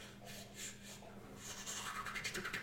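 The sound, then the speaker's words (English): A deck of about 20 long, very thick cards being shuffled, a series of soft papery scrapes and rubs that speed up into a quick, rippling riffle near the end, with no voices. “These are long cards, but yay, long and very, very thick. As he pulls them out, they can only be shuffled into this way.”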